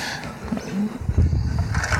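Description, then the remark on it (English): A wooden floor creaks with a couple of short, low squeaky groans, followed by a stretch of heavier, muffled rumbling creaks as weight shifts across the boards. “And from here in, this floor squeaks.”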